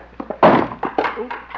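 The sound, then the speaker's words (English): A chair is accidentally knocked over and tips with a heavy wooden thud, followed by several lighter knocks and scrapes as it settles on the floor. “Didn't mean to knock over the chair.”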